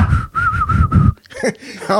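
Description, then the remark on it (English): Someone whistles a short, jaunty tune, a bright steady melody over rhythmic low thumps for about a second, before the whistling stops and a voice begins talking. “Just a jaunty tune. Just working away, ain't it?”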